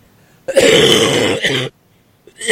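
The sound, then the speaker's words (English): A loud, rough cough bursts out and rasps for about a second, then falls silent before another harsh cough starts right at the end. “Usually when I talk, I cough.”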